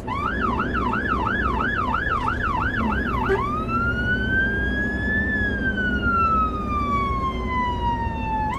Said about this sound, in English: Well, you will have guessed by now that that's an emergency vehicle, police, fire, ambulance, but which one?